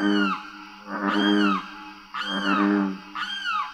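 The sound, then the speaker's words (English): Loud, wailing limpkin calls repeat about four times, each a harsh, harmonic scream that rises and then slides down, over a steady chorus of green tree frogs and booming bullfrogs in a swamp on the Wasissa River in Florida. “A loud chorus of green tree frogs and booming bullfrogs is interrupted by the insistent calls of a limpkin.”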